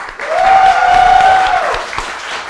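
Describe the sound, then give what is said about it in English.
An audience breaks into steady applause for Scott Wiener, the round-one judge on stage, dense overlapping clapping with a few whoops mixed in, holding strong for a couple of seconds before starting to fade. “Round one, our judge for round one, already on the stage, everyone, one more round of applause for Scott Wiener.”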